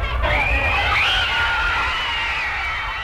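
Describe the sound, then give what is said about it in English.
A crowd of young women standing outside the Plaza Hotel in New York City screams continuously, a loud, dense wall of shrill, high-pitched voices whose pitch wavers and swells without pause, with a low rumble underneath. “This is a group of young ladies standing outside the Plaza Hotel in New York City.”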